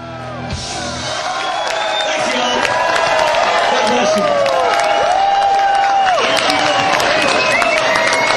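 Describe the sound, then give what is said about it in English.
A large concert crowd cheers continuously after the band leaves the stage following its second set, with overlapping whoops, shouts and scattered clapping swelling into a loud, sustained roar as they call for an encore. “And this crowd's not going to let them get off the hook that easy, because I know they're going to come back on the stage for an encore or two.”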